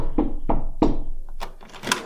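Three firm, hollow knocks on the door of a house in quick, even succession, fairly loud, followed by a few softer shuffling sounds.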